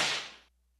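A single whip-crack sound effect, a bright hissing snap that fades over about half a second and then cuts off abruptly into silence. No voices.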